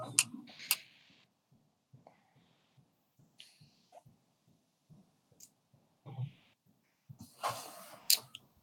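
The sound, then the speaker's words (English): A woman shuffles a deck of cards while a question is thought over: soft papery riffles and flicks at the start, scattered small taps, then a louder, longer riffle near the end, all without talking. “She's shuffling the deck as you think.”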